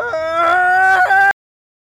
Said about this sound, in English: Thatcher lifted his collar, looked beneath his shirt. Thatcher did scream.